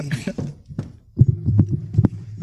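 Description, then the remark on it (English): Horse hooves clip-clop in a steady run of sharp knocks over a low rumbling hum, after a brief murmur of voice at the start. “And then the horses.”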